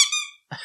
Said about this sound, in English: Literally a bike bell and a bike horn. We went to the bike aisle and came up.